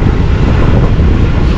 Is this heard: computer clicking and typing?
no